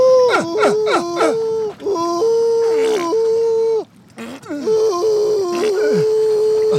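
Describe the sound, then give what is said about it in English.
A human voice imitates whale song with long, wavering moans and groans, sliding up and down in pitch with sharp vocal swoops, broken by a brief pause midway. “Let me try some whale song.”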